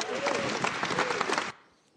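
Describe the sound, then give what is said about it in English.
A room full of people applauding after a speaker thanks every Amazon employee and Amazon customer, a dense, steady wash of clapping with a faint voice mixed in, lasting about a second and a half before cutting off abruptly to near silence. “And how messed up is it that a whole room of people can clap for that?”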